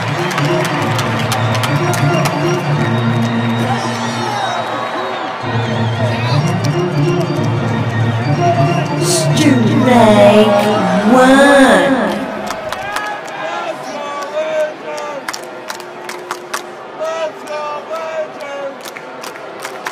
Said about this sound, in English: Crowd disapproves.